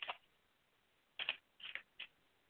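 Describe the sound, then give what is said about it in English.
A deck of cards being shuffled for a card reading, heard as several short, crisp papery bursts separated by pauses, fairly quiet, with no voices. “Okay, so tell me when to stop shuffling.”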